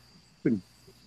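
Crickets chirp faintly in a steady, high-pitched drone that runs through the whole moment, briefly interrupted by a short, louder low-pitched sound near the middle.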